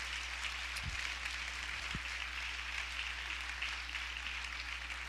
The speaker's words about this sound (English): I thank God for every one of them. And I think you ought to give them a hand.